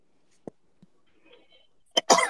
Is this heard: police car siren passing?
no